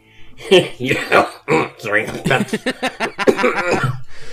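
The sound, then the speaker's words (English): A loud run of harsh, hacking coughs comes in quick irregular bursts, some rough and voiced, continuing for several seconds with brief gasps in between. “Sorry, I got a cough.”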